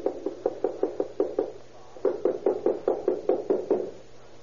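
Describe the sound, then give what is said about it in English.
Two bursts of firm, rapid knocking on the door of apartment number 7 in an apartment house, about seven raps each, separated by a short pause; the thuds are hollow with a faint background hum. “Then he approaches the door of apartment number 7, where Captain Spangler is.”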